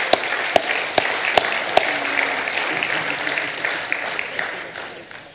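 A church audience in Cincinnati breaks into applause: a few sharp, evenly spaced claps ring out first, then the clapping thickens into a steady, loud wash with faint cheering voices mixed in.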